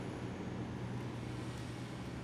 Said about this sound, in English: The sound of the bus approaching, the squeal of the brakes, signaled the start to your day, whether you liked it or not.